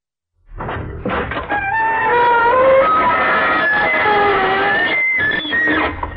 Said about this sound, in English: Good evening, you on the other side of the creaking door. This is your host to welcome you into The Inner Sanctum.